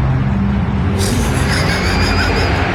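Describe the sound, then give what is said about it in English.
A car engine rumbles steadily, its low drone joined partway through by a brighter hiss of road and wind noise as the car keeps moving, driving up to a Target store. “So he starts off the video driving up in his car to the Target.”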